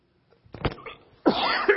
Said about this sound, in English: I'm so sorry. I'm coughing my head off.